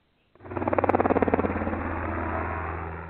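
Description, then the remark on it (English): An approaching helicopter's rotor thumps in a rapid, rhythmic chop over a deep engine drone, loud, then blurs into a steadier roar. No one speaks. “Well, I bet that's the food police in that helicopter heading your way.”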